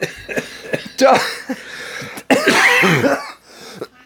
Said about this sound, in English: For God's sakes, get rid of that cough. Yeah, no kidding. It's just a cough.